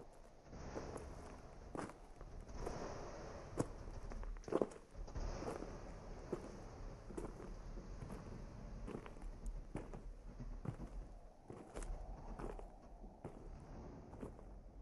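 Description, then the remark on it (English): Steady footsteps crunch along at a walking pace for the whole stretch, each step a sharp thud over a low rumble of wind, with a couple of heavier scuffs partway through. “Suddenly, I heard footsteps.”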